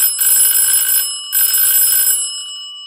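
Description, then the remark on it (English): An antique doorbell buzzer, wired with old cloth wire to a doorbell button and a replica 1930s battery filled with D batteries, rings twice in loud, shrill, metallic bursts of about a second each, separated by a short pause, with the second ring fading into a faint lingering hum. “I got the doorbell button and the buzzer.”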